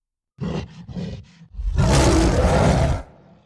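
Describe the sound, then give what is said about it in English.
A gorilla roar: four quick, throaty grunts lead into one long, loud, rasping bellow lasting over a second, which then trails off into a faint rumble. “I yelled in pure gorilla.”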